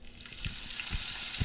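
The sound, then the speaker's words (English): Steady, bright sizzling of food frying in a pan, with a few soft pops breaking through about every half second. No voices, moderately loud. “Hear that crack sizzling up? I can hear that shit fucking popping.”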